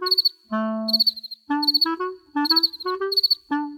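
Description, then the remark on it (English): Crickets chirp slowly, sleepy from the cold, a thin high-pitched trill pulsing in unhurried bursts, heard over a series of low, sustained tonal notes. “And because they're sleepy, they sing slower.”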